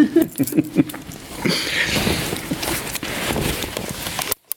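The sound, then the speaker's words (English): A film camera loaded with film clicks its shutter several times in quick succession, then a rougher, scratchy mechanical rattle runs on for a few seconds before cutting off abruptly. No one speaks. “You can tell by the clicking noise and the fact that we've got a number, I genuinely do have film in my camera”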